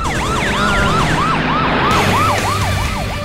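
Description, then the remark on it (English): A police patrol car siren yelps in rapid, rising-and-falling wails, loud, as the car comes right toward the listeners, with a low rumble of traffic and engine noise underneath and no one speaking. “The patrol car. It's coming right at us.”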